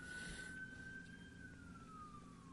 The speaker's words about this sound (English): Wow, lots of sirens over here, sorry.